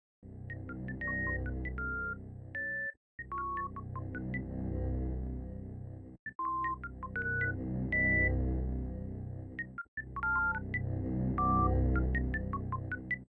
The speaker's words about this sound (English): I want to bring up the item room music from Super Metroid because it's so sparse and so minimalist and so weird